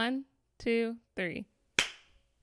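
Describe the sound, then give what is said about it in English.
Three short voiced sounds, like a count, lead into a single sharp hand clap. The clap is loud and crisp, with a brief ringing tail that fades quickly into quiet. “All right, clap.”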